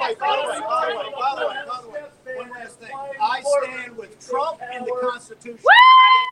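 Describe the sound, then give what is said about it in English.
A noisy crowd chatters and yells, then a loud, high-pitched scream from a young woman rises sharply near the end and holds, cutting through the din. “And as much as I enjoyed that young lady screaming, there's always one of those in a crowd, isn't there?”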